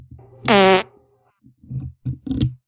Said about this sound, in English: That was a real life fart right there. Right on the air. Love it. I'll sample it later.